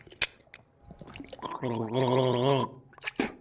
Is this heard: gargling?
yes